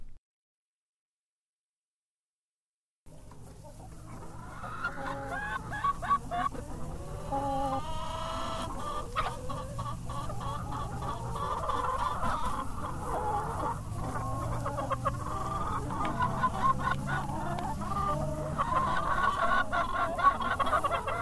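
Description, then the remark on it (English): A rooster clucks and calls repeatedly amid a busy flock of chickens, the clucking steady, with a brief silence before the birds start up. “That's a proud rooster”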